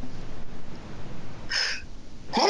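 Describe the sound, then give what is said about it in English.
A sneeze, with a short sharp breathy burst followed by a louder, harsher second burst at the end, over a low steady background hum with no talking. “Bless you.”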